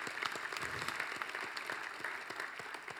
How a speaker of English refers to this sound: We can clap for that. Amen. It's awesome.